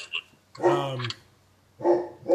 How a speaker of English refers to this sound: Oh, man. Oh, shit. Sorry. Dogs. Crazy.